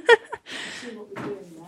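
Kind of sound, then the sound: household object, door being opened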